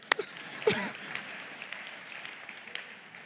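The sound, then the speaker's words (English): A church audience claps: two sharp hand claps ring out early, followed by a soft, scattered patter of applause that stays fairly faint for a few seconds. “Yeah, some of you are doing good. Clap.”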